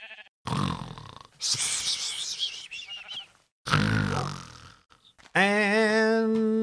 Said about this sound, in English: Spooky sheep.